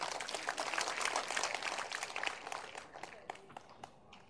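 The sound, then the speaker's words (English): A roomful of people at a church service clapping together for the Lord, a dense, steady patter of applause that thins out and fades to a few scattered claps by the end. “Let's give the Lord a clap for that.”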